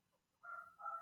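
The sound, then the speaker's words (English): A dog lets out two quick, high-pitched barks, one right after the other, faint, with no one talking, while the wind is blowing. “let's give it some doggy flavor.”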